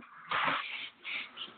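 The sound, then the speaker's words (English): A dog barks three times in quick succession: a longer, rough first bark followed by two shorter ones, muffled and fairly quiet. “My dog started barking for no reason during the last segment, so I had to mute my end of the conversation”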